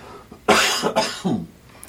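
A loud cough in three quick bursts, harsh and raspy, with a short pause between each, alone and without talk.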